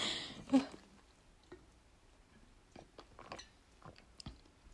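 A quiet sip from a drink, with a brief slurp near the start followed by soft swallowing and small wet mouth clicks amid silence.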